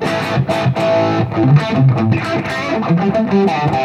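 A distorted Seafoam Green electric guitar, on its split single-coil pickup selected with the push-pull volume knob, plays a gritty, sustained riff with shifting notes for a mean Eddie Van Halen-style tone, loud, no voices.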